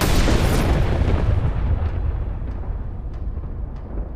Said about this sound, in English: And when a super high voltage power line with no rubber around it gets too close to a tree, zap. And in fact, it can be actually more violent than what you described. That's an arc flash or looks like a lightning bolt, basically.